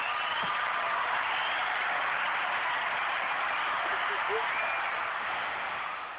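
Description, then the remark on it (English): A hand-clap applause sound effect: sustained clapping from a crowd, a dense steady patter of many hands at even loudness for several seconds, tapering slightly at the end. “You get hand claps. She get hand claps. Everybody get hand claps.”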